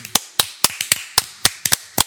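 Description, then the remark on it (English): A hand clap sound effect: about nine sharp, loud claps at a fairly steady, brisk pace, ending with a quick double clap, with no talking over them. “We need a fucking hand clap for Illinois.”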